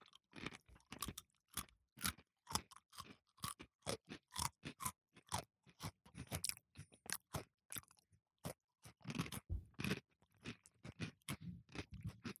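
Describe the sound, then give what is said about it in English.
Someone crunches and chews a pretzel, a steady run of sharp, crackly bites and munches at an uneven rhythm, with short pauses between bursts and no talking. “Okay, well, enjoy your pretzel, mate.”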